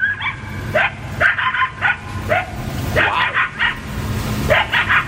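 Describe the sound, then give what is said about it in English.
Coyotes yip and howl in a frantic chorus in a backyard very early in the morning, a rapid series of high, overlapping yelps and wavering cries over a steady low rumble, loud throughout. “The coyotes right in my backyard, yeah, having a fit.”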